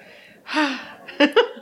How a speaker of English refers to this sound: You're panting.